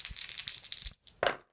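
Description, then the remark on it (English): Dice rattle quickly for about a second, then fall silent briefly before a couple of sharp clacks as they land, an action die and challenge dice rolled plus wits for a game character on an expedition. The bright, clattering sound plays alone, with no voices. “And so he is going to roll plus wits on this part of the expedition.”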